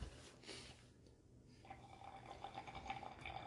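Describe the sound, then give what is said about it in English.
Water bubbling in a bong, a quiet, steady run of small gurgling bubbles that starts partway through and continues to the end, with no one talking. “Yeah, well, it's the water kind of going.”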